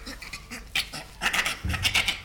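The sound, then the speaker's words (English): A bonobo's laughing call: a quick run of breathy, high-pitched panting bursts and squeaks in an irregular rhythm, with no talking. “All right, well, let's listen to the bonobo.”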